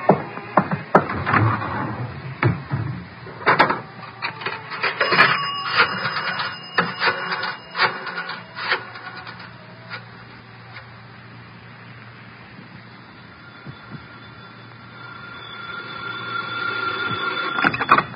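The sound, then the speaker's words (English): A telephone in a phone booth at the Riviera is dialed with a quick run of mechanical clicks and taps to call Nero Wolfe. The line then rings in a steady, moderately loud repeating tone, with no one speaking. “I got to make a phone call. There's a booth.”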